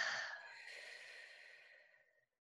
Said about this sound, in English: Breathe in through the nose for four. Hold for four. Audible exhale out for four.